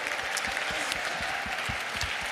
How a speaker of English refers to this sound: I think a lot of it, the ground that we've covered, you've been great, panel. Let's just give the panel a round of applause, actually, just for...